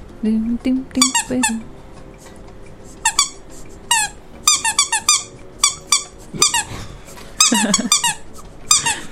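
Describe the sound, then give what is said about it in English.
A squeaky rubber duck toy is squeezed over and over, producing loud, high-pitched squeaks in quick irregular bursts, with faint voices occasionally underneath. “Sounds like you're torturing a duck.”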